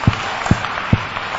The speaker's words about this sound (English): Those who are clapping, may God give you 100 Ghana cedis. For free.